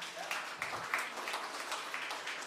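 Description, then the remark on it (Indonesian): A church audience claps for God in a dense, steady patter of many hands, moderately quiet, sustained for a couple of seconds with a few sharper claps standing out early on. “Wow, beri tepukan untuk Tuhan.”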